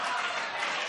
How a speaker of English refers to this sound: Just hang tight. Hey, stop clapping. All right, let me finish.